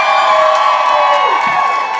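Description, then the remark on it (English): A live audience cheers loudly and continuously for two seconds to vote for a contestant, a dense wash of shouting and whooping voices with a few higher cries rising above the roar. “Make some noise if you can talk to ghosts in the world, but only about politics.”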